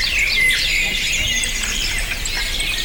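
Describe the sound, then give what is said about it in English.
A crow caws harshly, its rough squawks running continuously at a steady loudness over a busy background of bird chatter, with no voices present. “Yeah, until a crow shows up and just ruins everything.”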